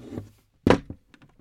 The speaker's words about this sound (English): Did you just slam that cabinet door?